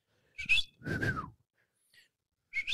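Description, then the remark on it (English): A person whistles in three quick bursts, with a longer swooping note in the middle and a sharp rising call at the end, imitating a character's signal whistle, with no talking. “I would love to have his whistle.”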